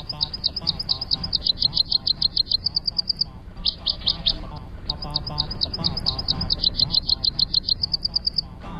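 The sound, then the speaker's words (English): A Tennessee warbler sings loud bursts of rapid, high-pitched staccato chips, each run of notes racing along like a dry trill, repeated three times with short pauses between. “The Tennessee is not the most colorful of warblers, with olive upper parts and pale whitish underparts, but it kind of makes up for that with its distinctive song.”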